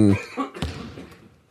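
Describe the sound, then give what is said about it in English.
A brief Raptors sting built around coughing: a loud, tonal vocal burst opens it, then a sharp cough-like hit and a trail of fainter, rough bursts fade out before a final click. “Yeah, it's the coughing one.”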